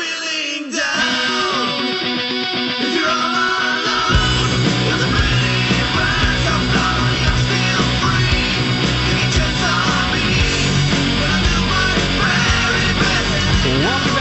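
A loud cover song with harsh, screeching vocals over a dense full band; heavy bass and drums kick in a few seconds in and the strained singing continues throughout.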